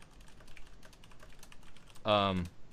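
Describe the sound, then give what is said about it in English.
Quiet, rapid clicking of fingers typing a question into a computer keyboard for a couple of seconds, an irregular patter of keystrokes, followed by a brief voiced sound from someone. “No, I'm typing it down.”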